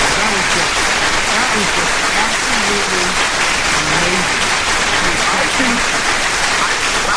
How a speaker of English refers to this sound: I got to give you another round of applause.